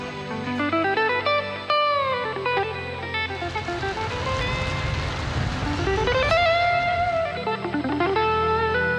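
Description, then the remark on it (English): A guitarist plays electric guitar volume swells at Melbourne Park, Melbourne, Australia: sustained, effect-laden notes fade in and ring out over a steady band backing, with some notes bending in pitch and a low rumble underneath. “You can hear some … volume swells already.”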